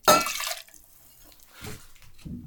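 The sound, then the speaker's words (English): 1.5 ounces of Kettle One Botanical Grapefruit and Rose liquor pours into a metal cocktail shaker, before any ice, in a bright, splashy gush that tapers off, followed by a few softer trickles and a sharp clink at the end. “I'm going to start with booze in my shaker.”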